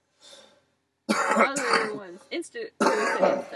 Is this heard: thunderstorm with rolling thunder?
no